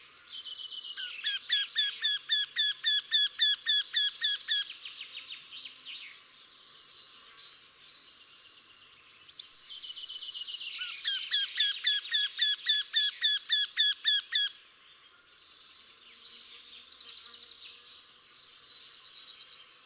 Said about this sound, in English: The voice of the wryneck resembles a little that of the lesser-spotted woodpecker, giving a kind of key, key, key, key, prolonged and fast, more intense at the end.